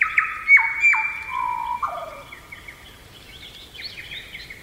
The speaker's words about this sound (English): And this is probably the bird from around the world that most sounds like human music. It's really hard to hear this and not say, wow, birds are musicians.